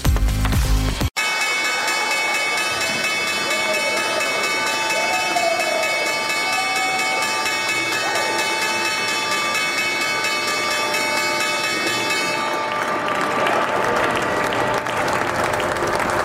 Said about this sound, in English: last day of trading for the first week of February. That was the opening bell.